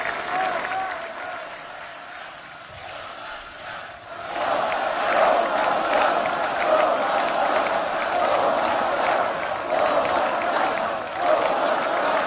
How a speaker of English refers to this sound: That's a massive crowd chanting Donald Trump, Donald Trump.